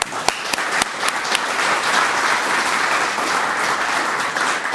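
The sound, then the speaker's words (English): Sustained audience applause welcoming the panelists of an evening session, a dense steady patter of many hands clapping at an even loudness, with a few sharper individual claps standing out near the start. “But if you could just join me in welcoming all of the panelists tonight.”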